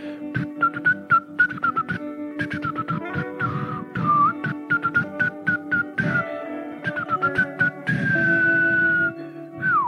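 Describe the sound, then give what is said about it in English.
A breathy, flute-like whistle made by blowing into one's arm and playing it like a flute holds wavering notes, broken by frequent dry taps and puffs, ending on a long tone that slides downward. “did that flute noise bother you? And you march through the forest, blowing your arm flute.”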